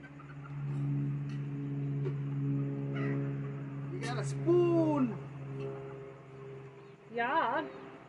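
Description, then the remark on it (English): Turkeys and peacocks call: a loud, drawn-out swooping cry midway, then a quick warbling burst near the end, both over a steady low mechanical hum with faint background talk. “I was gonna, can you give those to the, turkeys and peacocks?”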